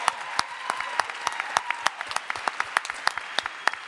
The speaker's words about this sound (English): Well done. Stand up. We will clap for you.